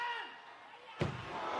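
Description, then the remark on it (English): A single sudden explosion, part of the entrance display at a wrestling match, bursts out over a steady roar of crowd noise, its sharp blast giving way to a sustained rumbling wash that stays loud through the end. “We're about to see the big explosion.”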